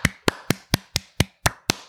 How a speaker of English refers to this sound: Come on, round of applause, please.